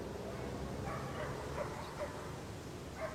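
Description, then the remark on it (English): A police canine-unit dog barks repeatedly in short, irregular yaps, fairly faint, over a steady hiss of background noise. “Appreciate all the time and all the, you know, amazing things that you showed us with all these dogs.”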